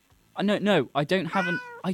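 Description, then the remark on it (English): A person mimics a cat, producing a quick string of whiny, rising-and-falling meows, several short ones and one drawn-out, fairly loud with brief pauses between. “I don't have any cat food. No, I don't.”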